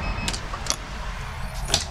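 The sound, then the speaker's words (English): The side door of a new medic truck at Engine 47 in the Grace Ferry neighborhood of South Philly being worked, with three sharp latch clicks and clunks spaced apart over a steady low engine rumble, and no voices. “All the newer trucks have like the side door, so we have quick access.”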